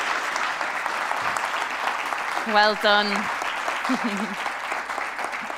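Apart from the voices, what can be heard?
audience applause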